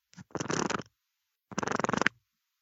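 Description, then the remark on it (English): The mount arm of a small speaker gadget creaks in two separate passes as it is lifted up and moved down, each a short rasping run of rapid, stuttering clicks, like a stiff joint being moved. No one speaks. “It's the arm on my little speaker gimmick. The arm? It's going up and down.”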